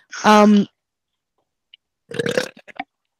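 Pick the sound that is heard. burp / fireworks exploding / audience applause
burp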